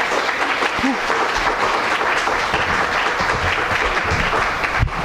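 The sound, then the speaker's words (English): Sustained audience applause, a dense, steady wash of many hands clapping at a constant loud level for several seconds with no clear pauses. “If I could ask you each to curtsy after the applause.”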